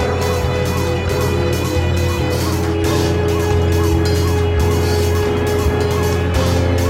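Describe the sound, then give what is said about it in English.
Loud, relentless car horns blare continuously and overlap one another, forming a dense wall of honking traffic noise with no pauses and no voices. “and the relentless sound of cars honking out their distress.”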